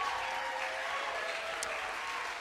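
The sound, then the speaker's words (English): A large audience applauds steadily for its home church leaders and regional team leaders, who stand. A dense wash of many hands clapping at once holds at an even level throughout without pauses. “would you guys please stand so we can give you just a huge round of applause?”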